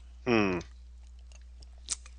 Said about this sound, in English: Okay, sorry. I had to take a sip of my Red Bull. sugar free.